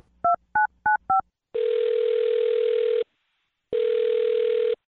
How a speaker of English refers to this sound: Okay, yeah. Now I'm going to dial the phone number and call him. Here we go.